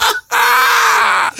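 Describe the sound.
A person imitates a bat with a sustained, high, squeaky shriek lasting about a second, steady and bright with faint wavering, after a brief opening vocal burst and a short pause.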